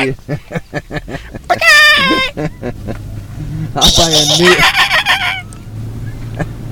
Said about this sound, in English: Is that what he means by bird noises? I don't know. I don't like those.